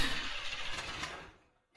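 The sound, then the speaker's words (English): A car starter grinds and cranks in a steady, rough whirr for over a second without the engine catching, then cuts off, followed by a faint click. “Oh, the starter won't work again. Oh, it won't start again.”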